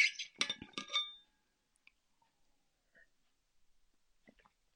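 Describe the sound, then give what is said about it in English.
A brief cluster of bright, ringing glass clinks and knocks opens, then quiet follows with a few faint small clicks and soft gulping sounds as water is sipped. “Just have some water.”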